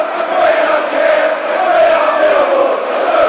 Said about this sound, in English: Crowd singing, we're top of the league. I suppose we are at the moment.